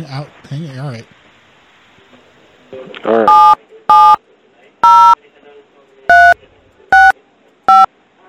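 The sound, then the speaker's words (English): Six loud phone keypad tones beep one after another at a steady, slightly uneven pace as a caller enters a phone number, following a brief bit of a voice at the start. “Yeah, I just put my phone number in.”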